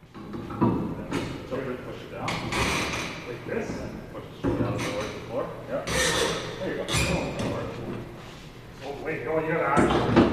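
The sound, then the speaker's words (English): A door with a wood block in it being forced open with considerable effort: repeated thuds, scrapes and rattling bangs over several seconds, with people's voices audible in the background. “wood block in there, and I put a lot of force into that thing, or at least I thought a lot of force, and it took quite a bit of effort to get it open, but it was so cool.”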